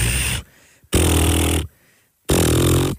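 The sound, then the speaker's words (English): A voice imitates the lip fluttering of mouth snoring during sleep, making three loud, buzzing bursts, each under a second long, separated by brief pauses in a steady rhythm. No speech. “my lips, I guess, flutter while I sleep”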